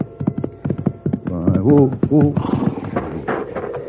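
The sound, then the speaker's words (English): Quick hoofbeats of a horse galloping across the desert, spurred on by its rider toward a fallen man, clatter in an uneven rhythm, then continue beneath loud strained vocal cries that rise over them. “I dug my heels into my horse and rode to where he had fallen.”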